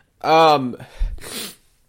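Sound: sneeze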